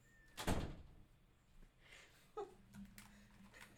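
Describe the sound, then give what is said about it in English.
A door swings shut with a solid, fairly loud thump near the start, followed by fainter knocks and rustling movement in otherwise quiet surroundings. “No, just finish and close the door.”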